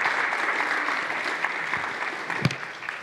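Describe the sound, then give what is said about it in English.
An audience claps steadily for a few seconds, a dense wash of many hands at moderate volume, with one sharper clap standing out near the end, giving a round of applause for WWE Hall of Famers Eric Bischoff and Jeff Jarrett. “So a round of applause for a couple Hall of Famers.”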